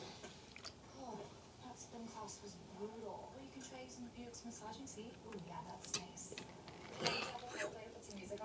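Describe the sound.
Someone quietly takes a sip of a drink, with soft wet slurping and a couple of sharper swallowing clicks toward the end, while a faint, muffled voice murmurs underneath.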